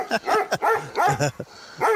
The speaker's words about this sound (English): Who's that? Are they going to start? Are they going to start barking jingle bells? is that Rin Tin Tin? Who the heck is that?